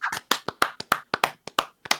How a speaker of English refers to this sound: But that's going to be it for us today, friends. Let's clap it out. That's a show.